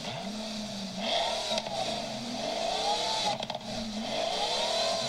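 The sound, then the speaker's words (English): A Pagani Huayra's Mercedes-AMG engine revs hard with rising and falling pitch sweeps, snarling loudly and continuously, no one speaking, with a brief mechanical crackle partway through. “Pagani Huayra. Fucking hell, that's good. That's an AMG engine, isn't it?”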